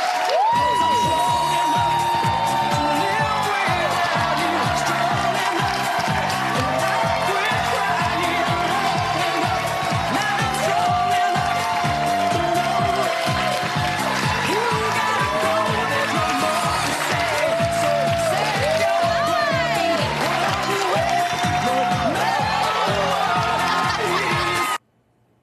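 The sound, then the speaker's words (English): A large crowd yells, whoops and cheers continuously for a dance by child drag performer Desmond Naples, a.k.a. Desmond is Amazing, a loud dense roar of many voices with shrill screams rising above it, sustained for the whole stretch before cutting off abruptly. “That poor child, that poor abused child, that mopey, lame dance, and everybody's yelling and screaming.”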